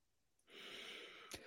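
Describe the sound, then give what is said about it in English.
A sneeze building up: a long, hissing breath drawn in for about a second, then a sudden sharp burst of air as the sneeze breaks out at the very end. “I'm about to sneeze.”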